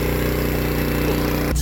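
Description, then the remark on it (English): A combustion engine on a Tesla runs at a steady idle while the car is charging, a loud, continuous low rumbling drone with no voices, shifting abruptly near the very end. “This engine's still running.”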